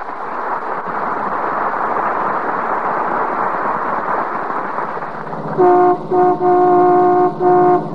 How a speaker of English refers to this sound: That's the McGee family car coming down 14th Street. The lady in the front seat is a Mrs. Dennison. And the lady driving the car is a Mrs. McGee of Fibber McGee and Molly.